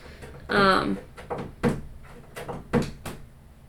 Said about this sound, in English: That is the cats clawing at the door. Because I saw the little noises happening. It's our orange tabby.